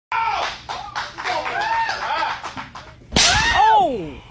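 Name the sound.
face slap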